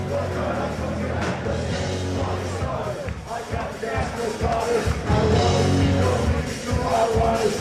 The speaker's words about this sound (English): And you can hear the crowd too. Like, you hear the crowd. They all know the words.